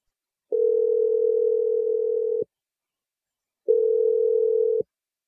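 A phone's ringback tone sounds twice: a steady, clear electronic tone lasting about two seconds, a pause of silence, then a shorter second ring. No one speaks.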